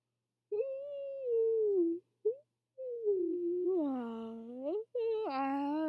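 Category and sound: human body sound, person yawning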